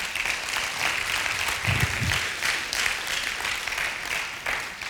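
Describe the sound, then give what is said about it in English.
A church crowd applauds its setup team steadily, a dense wash of many hands clapping at an even level for several seconds with no break. “And can we give them a great round of applause?”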